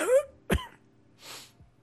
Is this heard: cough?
yes